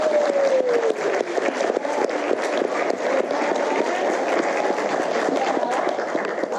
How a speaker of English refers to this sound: We have an amazing group of volunteer actors. Everyone give them a big round of applause.